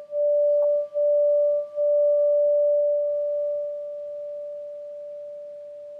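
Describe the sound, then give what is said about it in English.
A meditation bell rings with a pure, sustained mid-pitched tone that wavers briefly early on, then hums steadily and slowly fades over several seconds, with no voices. “And you listen to the sound of the bell moving through time.”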